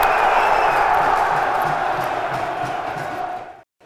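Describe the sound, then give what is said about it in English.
A whole stadium at a Millwall match against Blackburn applauding in a minute's applause: a dense, steady roar of clapping and crowd noise with some shouting mixed in, loud throughout before cutting off abruptly near the end. “Whole stadium applauding, this is.”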